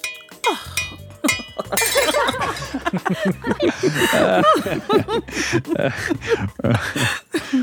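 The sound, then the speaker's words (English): A glass of Pinot Noir is accidentally knocked to the ground, clinking and shattering against the hard floor with a bright crash, followed by several people chuckling and laughing together. “You whirl around to face me as you gloat and accidentally knock your glass of Pinot Noir to the ground.”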